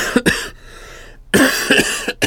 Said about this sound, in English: This cough is... it's getting real bad.